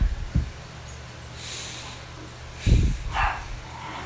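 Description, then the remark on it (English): Muffled dogs barking inside a house as they are being put upstairs, a few short, thumpy barks scattered across a few seconds, with no one talking. “My dog and my sister's putting the dogs upstairs.”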